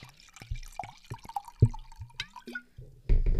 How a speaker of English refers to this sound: This is also a twist-off bottle, so there's no cork pop. We'll still hear the pour, right? Yeah, hopefully, yeah. If I do this right.